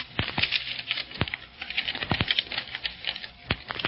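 Paper rustles and crinkles steadily as it is untied from a rock, with several sharp crackling snaps scattered through the busy, papery scratching. No one speaks.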